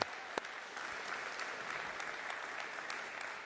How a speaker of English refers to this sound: let's give our worship team and tech team a big round of applause. They worked really hard.